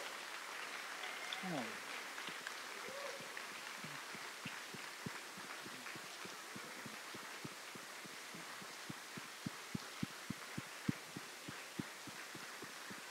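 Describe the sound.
An audience standing for a 60-second praise break applauds to give God a hand, in a steady wash of clapping, with louder individual claps popping out sharply and settling into a rough rhythmic beat toward the end, while voices cheer faintly underneath.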